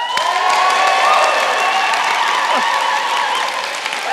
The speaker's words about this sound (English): Could you just practice kind of wild applause? Ready? 3, 2, 1.